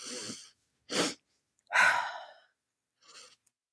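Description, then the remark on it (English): A double-inhale breathing exercise: two quick, airy breaths drawn in one after the other to fill the lungs, then a longer, louder sighing breath out, with a faint breathy puff afterward. Clear, with no talking. “in, almost to fully fill your lungs, and then taking another short shot of a breath in, and then sighing out.”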